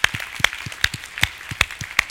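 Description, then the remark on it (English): An audience at a church service claps in unison to welcome people who raised their hands for prayer, with a steady, even rhythm of sharp claps roughly twice a second, each followed by a softer low thump. No one speaks over it. “Can we just give these guys a round of applause?”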